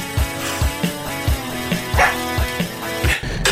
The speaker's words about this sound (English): Huxley loved it. He couldn't stop barking.